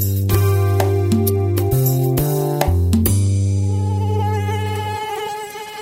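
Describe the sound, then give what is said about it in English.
A loud mosquito buzz drones continuously, its pitch jumping up and down in several quick steps before settling into a steady whine that gradually fades, with no voices. “They're not just annoying. Mosquitoes are the most efficient disease transmitters on the planet, killing more than 1 million people every year, according to the World Health Organization.”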